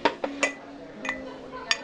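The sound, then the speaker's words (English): A water pitcher knocks against a glass in a series of about five sharp clinks, each leaving a short bright ring, spaced irregularly over a couple of seconds at a soft level. “Would you hand me the water pitcher, please?”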